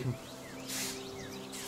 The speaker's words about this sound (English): We still hear birds. That won't last long.